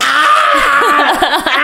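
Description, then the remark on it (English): A person imitates a yellow-crested cockatoo's screech: a loud, harsh, rasping squawk held for over a second, wavering in pitch with strained, gravelly overtones. “the most horrible screeching sound.”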